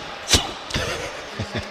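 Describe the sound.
A voice imitates a blow dart with the mouth: one sharp, breathy puff, then a second airy burst trailing into a short hiss, and two soft taps at the end. Fairly quiet.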